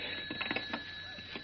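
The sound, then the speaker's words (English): A telephone rings with a steady, continuous bell tone, slightly muffled and fairly quiet, heard on its own with no one talking. “Maybe that's Smith now.”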